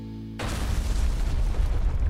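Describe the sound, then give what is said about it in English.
A massive explosion erupts from a corporation's building, splitting it in half. It bursts in suddenly after a brief low hum, then rumbles on as a loud, sustained roar of deep, crackling noise with no voices. “As they point to you, a massive explosion erupts from the Dredgers Corporation, just splits the building in half.”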